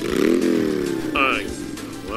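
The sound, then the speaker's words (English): A motorcycle engine runs with a steady, buzzing rumble that rises slightly in pitch, while a voice speaks over it. “Will you turn that engine off?”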